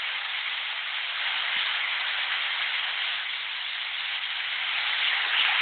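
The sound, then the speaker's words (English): A large crowd gives a standing ovation, applauding steadily in a dense, even wash of clapping that holds at the same loud level for several seconds with no voices breaking through. “Lots of applause and standing ovation and listening.”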